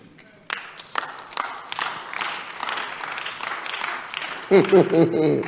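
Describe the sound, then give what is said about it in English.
About five people clap unevenly, the scattered claps thin and uncoordinated rather than a full round of applause, before a man's voice starts speaking over the tail end. “Only 5 people are clapping.”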